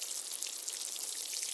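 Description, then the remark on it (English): Water splashes steadily onto soil covering freshly planted seeds, a continuous hissing patter like light rain, even in loudness throughout, with no voices. “Next, they need some water.”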